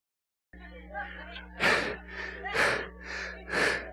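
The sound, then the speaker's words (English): A crowd draws a collective deep breath, three breathy whooshes in steady succession, each swelling and fading, with a faint low hum underneath and no talking. “Would you take a breath? Thank you. Get the oxygen out.”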